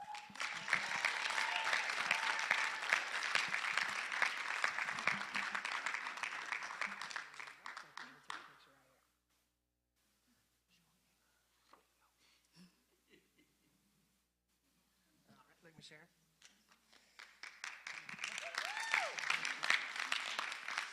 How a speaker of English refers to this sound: And y'all, as they get called, y'all give them a round of applause.